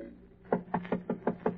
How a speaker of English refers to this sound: Then he knocks.